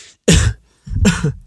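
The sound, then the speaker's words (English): Two loud coughs, one short and harsh, then a longer, rougher one after a brief pause, with no talking around them. “sorry to cough in your face.”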